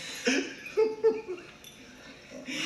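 A dog whimpers and lets out a few short, high yips in quick bursts, moderately loud, with brief pauses between them and a faint hiss of background noise.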